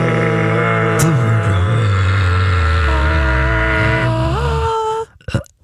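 A long, loud burp rumbles and croaks for about five seconds, its pitch wavering throughout, then stops abruptly, followed by a couple of brief noisy bursts.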